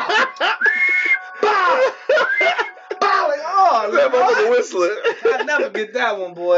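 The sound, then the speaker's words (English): A voice imitates the whistling swish of a water hose swung as a whip, making a string of rising and falling whooshing whistle sounds, loud, with bursts of laughter-like vocalizing mixed in. “Water hose, I'll never forget that bitch, because that bitch was whistling every time it hit my ass.”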